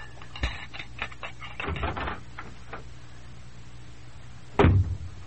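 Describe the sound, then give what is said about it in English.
A front door opens with a few clicks and rattles of the latch, then after a short pause swings shut with a solid thud. No one speaks. “Well, then go to school and go out the front door.”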